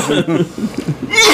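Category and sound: human body sound, cough into the microphone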